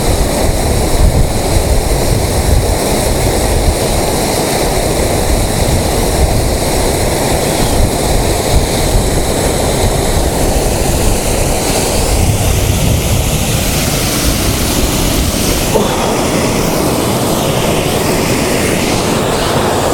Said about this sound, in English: I don't know how I'm going to get this waterfall, but the light coming on it is really quite nice.